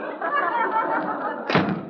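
A door slams shut once, a sudden heavy bang near the end that cuts through a steady murmur of background noise.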